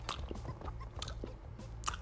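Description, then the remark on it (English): Dry, sticky cotton-mouth smacking right up against the mic, imitating the dry mouth that comes from sweating: a run of irregular wet-dry clicks and lip smacks, fairly loud, with no talking. “you will have that cotton mouth”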